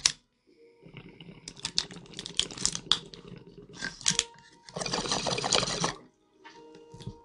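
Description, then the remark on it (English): Crackling bubbling of water through a pipe as someone takes a smoking hit, in a few uneven bursts and then a steady gurgling draw, with no talking. “And I'm going to take a hit as well.”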